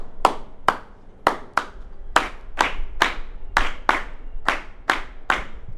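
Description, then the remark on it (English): A group of 15- and 16-year-olds in a percussion classroom claps a syncopated, clave-like signature beat, a New Orleans beat also known as the Cuban 3-2 son clave. Sharp crisp claps come in repeating clusters of two and three, loud, with no voices. “I want y'all to give me a hand clap.”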